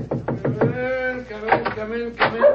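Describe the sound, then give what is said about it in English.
Dogs bark in a quick series of short yelps, then a few longer, drawn-out barks follow, fairly loud and insistent. “Quiet, Monty. Lie down. The dogs seem very pleased with themselves tonight.”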